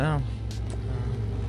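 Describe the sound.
A car rumbles past, its low engine drone steady and fairly loud throughout, with a short burst of voice near the start.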